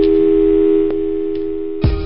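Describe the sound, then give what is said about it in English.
A steady, loud telephone dial tone hums throughout, broken by a couple of faint clicks, then a heavy clunk of a receiver being hung up near the end. “when you hear somebody hang up and listen, that's your cue to jump in.”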